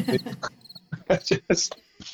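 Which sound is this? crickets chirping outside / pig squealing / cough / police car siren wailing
crickets chirping outside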